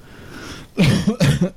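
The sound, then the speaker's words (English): Two loud coughs in quick succession from a person with a lingering cold, each a harsh burst with a rough, chesty tail, following a moment of quiet background hiss. “apologies for the coughing tonight.”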